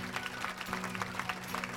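A crowd of wedding guests standing and applauding as the wedding party walks down the aisle at the end of the ceremony, a dense, steady patter of many hands clapping at even loudness throughout, with a faint low sustained tone humming underneath.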